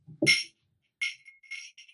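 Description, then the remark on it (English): Goblets of mead clinking together in a toast to Hades: two bright, ringing clinks about a second apart, fairly crisp, with a faint soft knock just before the first and no voices. “And she picks up a goblet.”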